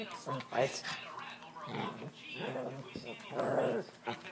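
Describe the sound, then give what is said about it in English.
An aggressive dog snarls and whimpers in short, agitated bursts, fairly loud, snapping and jumping, with growly yelps rising and falling across a few seconds amid some background voices. “Dog. Dog problem.”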